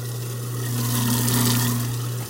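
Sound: garbage disposal running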